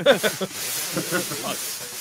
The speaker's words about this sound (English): That I heard. That I definitely heard. I can hear that one. Yeah, hey, are you just letting a balloon into the microphone? Now my tinnitus is to the roof, dickhead.